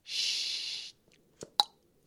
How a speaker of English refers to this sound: I've taken the wrapper off. The box is very nice. I'm opening the box. Can you get the sound of the box on the microphone? It doesn't open really. It slides.